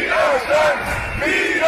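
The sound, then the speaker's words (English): A dense protest crowd walking through the streets of Berlin makes loud, continuous noise, many voices overlapping in rising and falling shouts and chant-like calls, with no single speaker standing out. “Looks like a peaceful crowd there just walking in the streets.”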